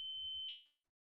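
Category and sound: household object, carbon monoxide alarm beeping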